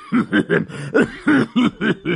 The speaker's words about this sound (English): Okay. Let me clear my throat a little bit.